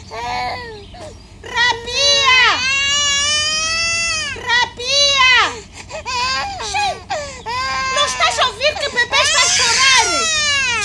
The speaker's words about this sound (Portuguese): O filho chora e estica a mão pedindo colo, mas a rapariga não responde. O bebê chora mais alto,